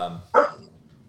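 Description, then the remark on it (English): German Shepherd dogs fighting in the background give one sharp, loud bark, preceded by a low rumbling growl and followed by a faint trailing murmur. “Oh, it's my German Shepherds.”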